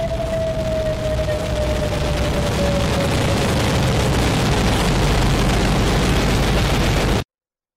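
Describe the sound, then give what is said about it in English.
A massive atomic bomb explosion, the bomb dropped by an American airplane on Hiroshima on August 6, 1945, rendered as a dense, steady roar and rumble that stays loud for about seven seconds, a thin high whine slowly dropping in pitch through it, then cutting off abruptly. “A short time ago, an American airplane dropped one bomb on Hiroshima and destroyed its usefulness to the enemy.”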